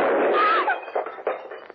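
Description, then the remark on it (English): A single sharp handgun shot bursts out at once as a gun held near the body is accidentally fired, its bullet breaking a vase, followed by a roughly half-second ringing, rumbling tail that fades unevenly, broken by a few faint knocks. “You were holding that gun near your body when it exploded.”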